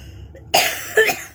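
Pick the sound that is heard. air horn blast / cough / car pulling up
cough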